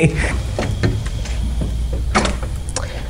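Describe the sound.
A door rattles and clunks a few times as someone stuck outside, unable to get in, tries the handle, then a heavier thud as it comes open, with faint voices murmuring in the background.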